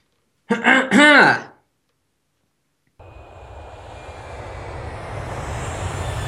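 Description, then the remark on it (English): A brief vocal sound, a pause, then a small Bonanza propeller plane's engine drones in, a steady rumble with a whining tone that grows gradually louder. “It's the Bonanza plane.”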